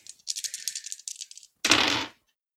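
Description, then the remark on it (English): Three dice rattle rapidly in a cupped hand for about a second, then clatter loudly onto a hard surface in one short burst. No one speaks. “That's three dice. That's two successes.”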